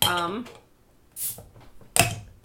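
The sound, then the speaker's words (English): The resealable bottle stopper of a carbonated ginger drink is worked open: a short airy hiss, then a sharp clacking pop with a brief ring. A voice briefly speaks just before. “So this is neat because it's resealable. Oh, yeah. You got a little like bottle stopper thing.”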